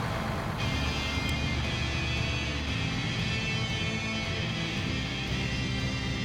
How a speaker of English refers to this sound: The truck shifts gears and rolls on, deeper into ungoverned country.